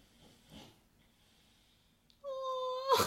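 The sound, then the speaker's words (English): A dog, Chica, lying asleep on a couch, makes a sudden high, steady whining note lasting under a second, then gives a short, breathy snort-like burst. Only faint background hiss precedes it, with no talking. “If you heard that, that was the first appearance of our dog, Chica, on the podcast.”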